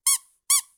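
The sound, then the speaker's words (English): Two sharp, high-pitched squeaks from the squeaker of a dog toy that the dog had chewed up and ripped apart, evenly spaced about half a second apart, each bright and shrill with a quick fade. Loud, with no talking. “And then I found this, which is just like the whistle part.”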